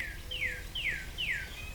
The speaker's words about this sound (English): That's a cardinal. There he is.